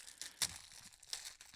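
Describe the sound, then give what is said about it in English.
Crinkly plastic fortune cookie wrapper being torn open, a few sharp crackling bursts with softer rustling between, fairly quiet and with no voices. “Let's do the fortune cookie.”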